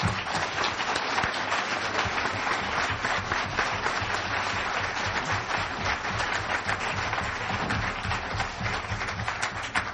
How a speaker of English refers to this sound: We've come now to the end of our forum, and I'd like a big round of applause for our candidates.